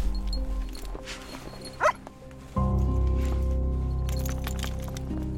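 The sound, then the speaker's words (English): Zappa, a certified human remains detection dog with a Georgian Bay Search and Rescue cadaver dog team at a remote wooded location, gives a few short, high yips and whimpers, followed by a steady low droning sound that continues to the end. “Zappa is my human remains detection dog.”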